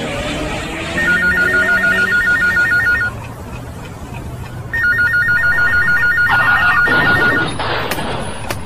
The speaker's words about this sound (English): Suddenly, the phone rings without warning.